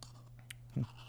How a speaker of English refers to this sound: Are you still eating? Yeah, I am now eating a Italian ice.